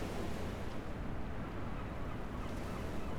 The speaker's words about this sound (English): I can faintly hear the call of the sea outside of the windows, but otherwise, the room is silent.